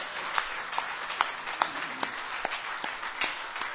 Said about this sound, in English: Let's give the Lord a hand of applause.